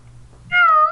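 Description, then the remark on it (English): A single clear cat meow, loud, rising out of a quiet low hum and lasting about half a second before cutting off. “It sort of looks over at you. Flying cats.”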